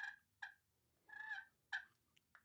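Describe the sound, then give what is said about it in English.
A turkey purr made on a game call: a few short, clucky notes and one longer rolling trill, played against a quiet background with no talking. “Yeah, all it is just a short staccato movement of notes that turkeys do to let you know that they're feeding, they're comfortable, they're unalarmed, and yeah, they're just taking it easy.”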